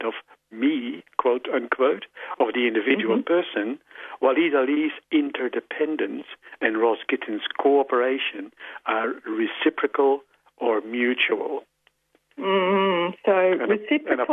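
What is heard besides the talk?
phone going off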